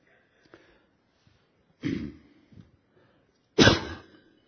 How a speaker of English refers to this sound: It's hard to cough when you have mics all over you. Thanks.